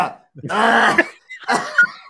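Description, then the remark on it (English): A voice imitates a cough: two throaty bursts, the first longer and rasping, the second shorter and loud, with a brief pause between them. “we're doing your cough.”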